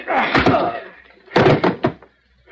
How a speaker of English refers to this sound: You killed him, Benton. Just knocked him cold with my pistol butt.